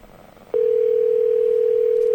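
A steady, loud telephone tone switches on abruptly after a brief quiet moment and holds unbroken as a single continuous pitch, with faint background hiss beneath it, as a phone call is placed over Skype.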